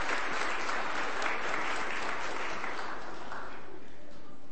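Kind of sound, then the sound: crowd, audience round of applause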